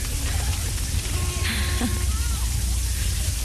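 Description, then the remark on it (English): Steady rain hisses continuously over a low rumble, with faint puddle splashes and a brief higher-pitched sound partway through. “I'm sure I can hear raindrops now and puddles and splashes and stuff.”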